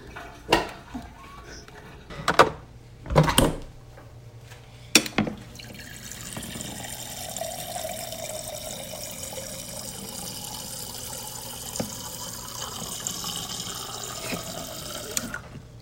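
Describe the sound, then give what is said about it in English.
A few sharp knocks and clunks, then a tap turns on and water runs in a steady hissing rush that continues to the end. “Today, it involves Google, and ice, and a lot of water.”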